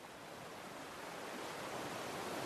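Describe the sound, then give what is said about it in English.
A steady, rushing wash of ocean surf against huge, sharp boulders around an island, swelling slightly louder over a couple of seconds, heard alone with no voices. “Huge, sharp boulders that have been protecting this island of faith from the waves that seek to destroy.”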